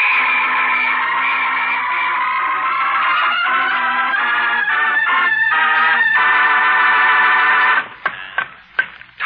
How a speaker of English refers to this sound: Endicott, officer, where are you? Blow that whistle again so I can...